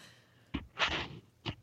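A breathy, airy yawn: a short puff of breath, then a longer hissing exhale, and a final brief breath. Soft, with no talking.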